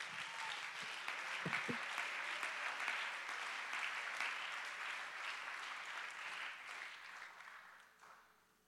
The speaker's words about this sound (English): Let's clap our hands and give God the praise right now.